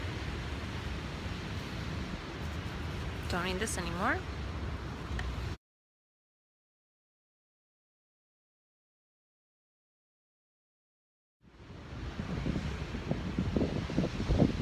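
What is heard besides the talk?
ocean waves and wind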